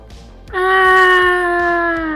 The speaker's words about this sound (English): Oh, I was hoping someone would scream at me. I was hearing people walk by again, so I kept saying it. I can scream at you, bestie. Okay, do it.